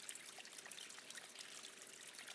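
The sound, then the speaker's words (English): Water trickles and drips steadily over an edge outdoors, a soft continuous splashing patter with small bright droplet sounds, fairly quiet and even throughout, with no voices. “Yeah, there's this sort of dripping of the water over the edge, and it's very calming.”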